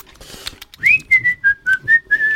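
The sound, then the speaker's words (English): A person whistles a short, wavering tune of about six sustained notes, fairly loud, with soft breathy rustling and low background noise underneath. “Yeah, you can whistle to your heart's content.”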